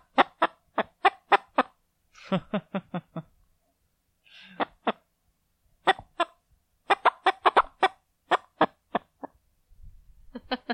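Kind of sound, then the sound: bird, hen clucking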